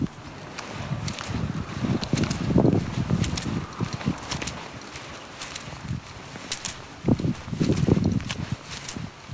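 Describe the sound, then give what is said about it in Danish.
Coins, about 23 kroner taken as cash for bingo, jingle and rattle in a pocket with each stride while walking down to bingo, bright metallic clinks over soft, steady footsteps and rustling fabric. No one speaks. “Pengene rasler i min lomme.”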